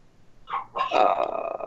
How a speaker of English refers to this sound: It sounds like Gucci also wants to hear it. He's barking like crazy in the background.